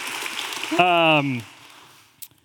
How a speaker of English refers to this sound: Yes. Yes. Thank you. Round of applause.